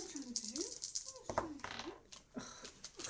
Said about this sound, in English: How many dice are you rolling? 2 dice. Oh, 2 dice, sorry.